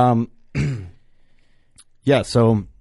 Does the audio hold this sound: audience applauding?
no